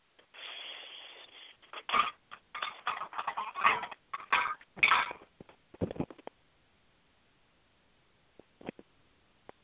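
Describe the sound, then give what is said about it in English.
A pet bird named Sunbird screams in a burst of loud, harsh squawks, one long screech followed by rapid choppy cries over several seconds, then quiet with a couple of faint clicks. “All right, Sunbird, I know you're screaming to go to bed.”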